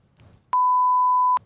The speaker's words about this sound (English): We went and we ripped and we teared and we punted on ponies and I had a big win and it was great. Big win? Big win. Big win. Big win. Can we beep out how much you won?